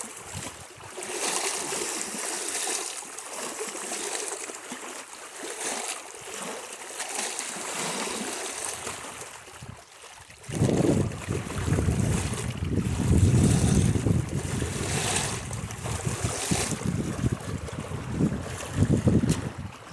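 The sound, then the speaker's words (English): An autumn lake ambience at Troy Lake, just north of Kingston, Ontario, in late September: a steady, airy wash of wind and lapping water, with a deeper rumbling gust swelling in about halfway through and lingering. No one speaks. “He recorded his CanGeo Soundscape, though, at Troy Lake, just north of Kingston, Ontario, in late September.”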